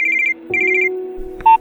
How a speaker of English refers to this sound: Panic ensues as his phone rings. Again, it's her.